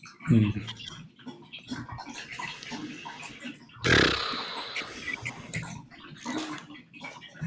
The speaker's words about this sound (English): Is there water in the background? Yeah, there is. There's a running water feature. That might be annoying. I think I've heard that in the past. It's the cat fountain.